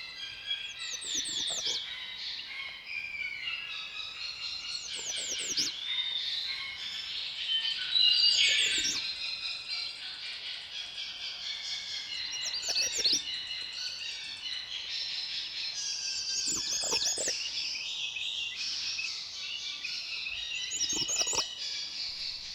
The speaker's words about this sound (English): Red starts often have an accented note toward the last of each song.